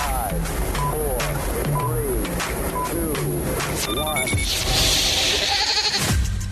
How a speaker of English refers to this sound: That goat did not like that launch at all. Yeah, we might have to jack the goat up a little bit, you know, just kind of make him a little bit know, more multiple animated.